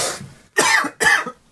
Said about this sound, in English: And of course, my Irish heritage brings. I am going to go into a coughing fit.